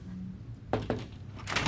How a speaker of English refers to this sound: Bobby just knocks but comes in anyway.